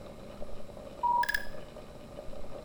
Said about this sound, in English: Your scanner is beeping. Routine maintenance. Hit the reset for me, will you?